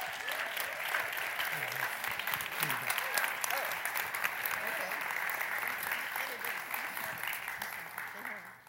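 Sustained applause from a church audience welcoming the pastor to the stage to speak on prayer, a dense, steady wash of clapping lasting several seconds before tapering off slightly at the end.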